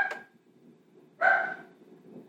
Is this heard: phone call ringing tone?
no